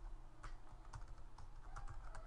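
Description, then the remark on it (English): Steady typing on a computer keyboard, entering the search "football rules" in a browser with Inquisitor, a quick run of light key clicks with a few sharper taps standing out, heard alone over faint background hum. “But to skip all those steps with Inquisitor, when you start typing in, now I'm going to go football rules.”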